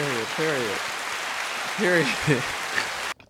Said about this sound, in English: Let's give a round of applause for that right there.